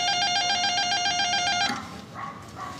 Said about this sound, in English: She said buzzer 5.